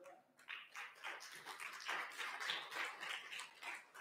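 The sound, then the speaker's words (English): An audience breaks into applause after a brief quiet moment, many hands clapping in a dense, steady wash that holds at an even, fairly loud level to the end, with no voices. “Give him a clap.”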